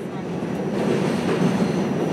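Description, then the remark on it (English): A steady, loud rumble of a subway train rolling along the rails, with a dense low roar and faint rattling throughout, continuous with no pauses. The ride is on subway and PATH trains heading to New Jersey. “About a month later, I was on the subway and PATH trains on my way to see her.”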